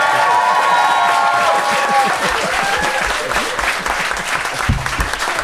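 Loud, sustained clapping from an audience fills the room, a dense crackle of many hands with a few whoops and cheers rising over it throughout.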